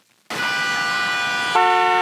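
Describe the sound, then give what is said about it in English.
A car horn blasts loudly in heavy traffic and holds steady for nearly two seconds after a brief silence, its tone shifting slightly partway through as the honk continues without a break. “Ugh, there's so much traffic.”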